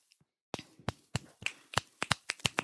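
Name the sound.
finger snapping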